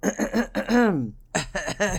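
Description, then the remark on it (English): A voice clears its throat in a few short, voiced bursts with a rising-and-falling hum, a brief pause, then another round of throat-clearing. “I'm going to tell you, excuse me, let me clear my throat because I'm going to get on my soapbox real quick.”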